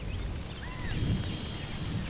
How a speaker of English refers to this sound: And then there's the rain, every pot farmer's worst nightmare. It causes mold, which can destroy your crop. Everything's going to get soaked. Things are going to start to rot.